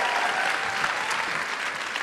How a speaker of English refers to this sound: Big round of applause for Sukh. Thank you so much.